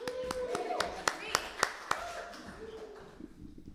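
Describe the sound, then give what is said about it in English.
A short burst of clapping: several sharp, evenly spaced claps ring out over a murmur of voices, then fade as the chatter resumes. “Round of applause.”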